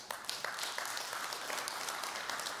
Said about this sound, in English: Somebody want to clap for that?